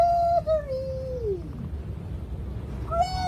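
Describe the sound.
A voice imitates a seagull: a long, high wailing cry that slides steadily downward, a stretch of quiet, then a short rising squawk at the end, over a low background rumble.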